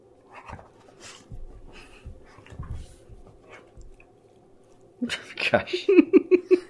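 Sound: dog panting and whimpering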